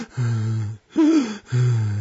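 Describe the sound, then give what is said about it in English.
A voice imitates the labored, gasping breathing of someone whose lungs and pericardium are full of fluid: three strained, rasping breaths in a slow rhythm with short pauses between them, loud, the middle one rising in pitch. “Or you end up alive with your lungs full of fluid and your pericardium, which is a sac around your heart full of fluid, breathing like this.”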